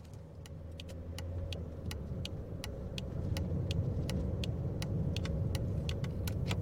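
car driving

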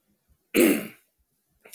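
coughing and throat clearing

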